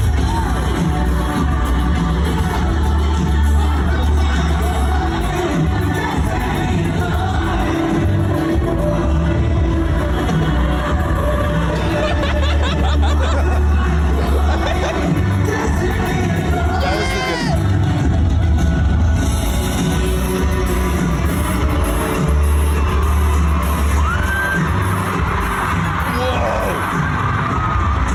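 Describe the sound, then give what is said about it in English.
A huge crowd screams and cheers continuously at deafening volume, a dense wall of high-pitched shrieks and yells with occasional whoops rising above the roar, sustained throughout. “Did like, you hear the screams?”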